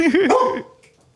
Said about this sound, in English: We got an excited dog on our hands. I think he's from outside, though.